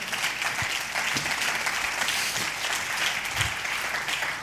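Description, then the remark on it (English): A crowd at a sermon stands and claps hands continuously, a dense, steady wash of many overlapping claps at an even loudness, with a few low thumps underneath and no voices. “Stand on your feet and clap your hands and say amen.”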